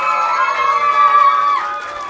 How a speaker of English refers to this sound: thanks for clapping and applauding CBH Viewpoint